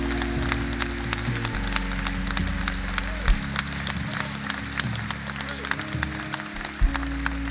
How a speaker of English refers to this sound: And ultimately, hello, I hope there's a clap.